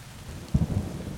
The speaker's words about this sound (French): Ils font une overdose de hummus et ils sont surpris parce qu'il pleut tout le temps.